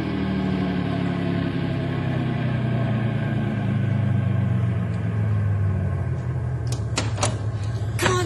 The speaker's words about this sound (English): stop the car gently and everybody out. Here goes. I've got him. Stop the car.